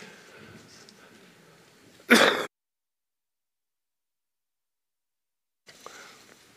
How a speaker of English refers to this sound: And because I catch every cold that my grandchildren get, I'm coughing again.